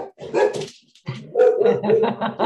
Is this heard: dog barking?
yes